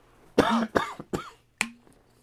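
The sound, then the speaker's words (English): A series of four harsh coughs, the first one longer and rougher, followed by three shorter hacking bursts with brief pauses between them, heard alone without any talking. “We have …, but a cough over here.”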